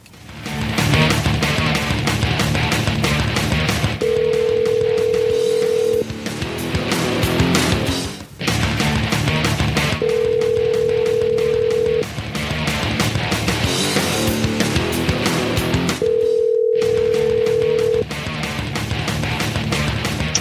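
A telephone ringback tone sounds three times, each ring a steady two-second tone with long gaps between, playing over a loud, continuous music bed with no one speaking, as the radio show Chop Talk calls 20th Century Racing on the phone lines.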